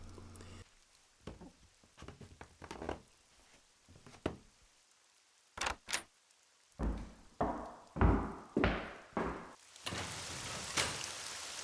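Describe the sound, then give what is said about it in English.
A door opens and shuts as a man walks out into a rainy parking lot, with a couple of sharp clicks and thuds, followed by bursts of rushing rain noise outdoors. Nobody speaks. “so he got up out of the chair and walked to the door.”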